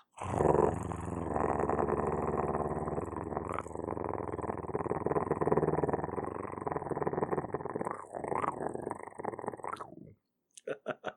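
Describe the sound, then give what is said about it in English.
A voice imitates a soft cat purr, a steady low rumbling drone held for about ten seconds with slight fluttering, then stops, followed by a few faint clicks. “A nice little soft purr. How about a nice little soft purr?”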